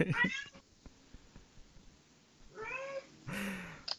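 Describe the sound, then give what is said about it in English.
A cat meows several times, with a short cry at the start followed by two longer, drawn-out meows, while soft background noise fills the gaps. “There's Cat.”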